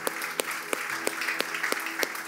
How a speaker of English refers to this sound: Can we give a big hand clap to celebrate all of those who chose Jesus this morning?